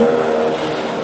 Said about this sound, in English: Helicopter flying by. Yep, I guess that happens once in a while. Sounds very low.